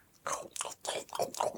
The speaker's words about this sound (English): And if not, I hope you enjoyed listening to us chew.